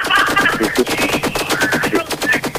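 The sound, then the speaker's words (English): A loud, sustained burst of rapid gunfire, shot after shot in a fast, steady rhythm like an automatic weapon, filling the whole moment with no voices. “Gunshot.”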